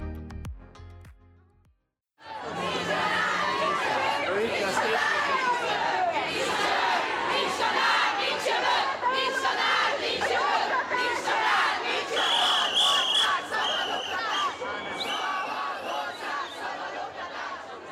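A large crowd of over 10,000 demonstrators on the streets of Budapest, Hungary, supporting the I Want to Teach campaign, chants and shouts together in a dense, continuous roar, voices overlapping loudly and steadily after a brief quiet opening, with some higher whistles or shrill cries cutting through.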